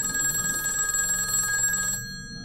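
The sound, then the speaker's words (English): A telephone bell rings steadily with a bright, sustained metallic trill, fairly loud, then cuts off abruptly near the end, leaving a low hum. “And the phone begins to ring.”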